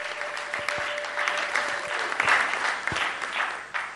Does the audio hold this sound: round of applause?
yes